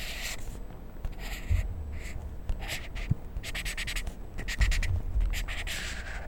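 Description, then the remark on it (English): A highlighter marker squeaks and scratches across a Bible page in a series of short, irregular strokes, each a bright, hissy swipe, with no talking. “But this is what it would sound like if I highlighted something on the Bible.”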